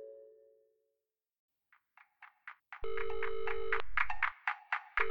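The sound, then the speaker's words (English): A telephone rings before a voicemail greeting, with bright electronic tones: a brief fading tone, a pause, then quick rhythmic chirps building into sustained, loud ringing chords. No one speaks. “I can't come to the phone right now, but we'll likely have an opening later on. Please leave me a message”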